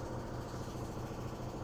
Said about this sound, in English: I thought I paused that dryer, but I didn't. So, laundry day. Laundry day.